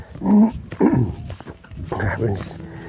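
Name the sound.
dog whimpering and growling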